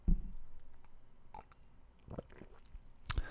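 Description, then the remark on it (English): A quick sip from a cup of hot Balzac's Dark Roast coffee held in the right hand: soft wet mouth clicks and small lip sounds, then a brief, sharp slurping burst near the end, with no talking. “So, if I'm going to start this day off right, I always have to start it with a hot cup of coffee, which I do have in my right hand, and I'm just going to take a quick sip here.”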